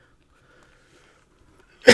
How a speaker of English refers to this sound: Sorry, I had a cough.